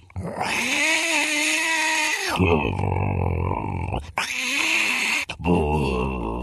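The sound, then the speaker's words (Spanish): A man's voice imitates a Bengal tiger's moan, a long, loud, throaty growling groan broken into a few drawn-out bursts, with no other sounds. “Yo soy un tigre de Bengala, así ella y yo.”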